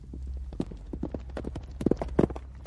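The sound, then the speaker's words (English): Hooves of a young horse being broken in at stables in France clip-clop in a steady, uneven rhythm, several sharp knocks per second, moderately loud over a low background hum, with two heavier thuds near the end. “breaking in young horses, getting these breakers used to people riding and controlling them.”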